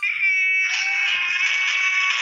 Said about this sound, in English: Baby goat. Oh, that's beautiful. It goes all night.